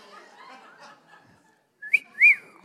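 Someone in the audience gives two short, bright whistles after a stretch of low murmuring crowd noise. The second whistle has a rising-and-falling wolf-whistle shape. Both are moderately loud.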